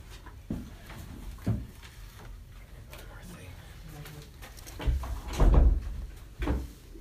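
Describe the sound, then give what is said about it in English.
A few soft bumps and shuffling noises, then a door swings shut with a solid, heavy thud, followed by a lighter knock. “Can we close the door?”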